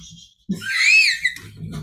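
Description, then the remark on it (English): A male dog whines in his sleep: one drawn-out, high-pitched nasal whimper that rises and falls in pitch, followed by a softer, breathy murmur. “Sorry, my dog is sleeping and whining in his sleep.”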